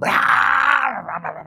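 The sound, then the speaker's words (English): A man's voice mimics a truck with no mufflers firing up in the dark before dawn, as heard from a deer stand in Brooksville: a loud, steady, growling rumble that holds for about a second, then breaks into a few sputtering pulses as it winds down. “Can you remember sitting in the deer stand in Brooksville, and it'd be dark, and it's starting to get right at deer light, and you'd hear this truck fire up.”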